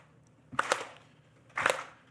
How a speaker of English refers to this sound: Slow. Slow. It's stillness. Not like, let's get it over with. They're not listening. Gentle. That's it. You can clap hard, just go slow. That's it.